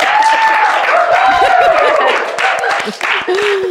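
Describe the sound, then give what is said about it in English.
A crowd claps steadily and loudly for a few seconds, with cheers, whoops and laughter rising over the dense patter of hands. “And it, so insert clapping.”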